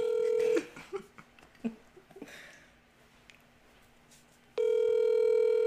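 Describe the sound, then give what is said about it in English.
A steady telephone tone sounds, then a few quick button tones are dialed to call someone's number, followed by a quiet pause and a loud, sustained ringing tone on the line. “Okay, his number I have. All right, let's call him.”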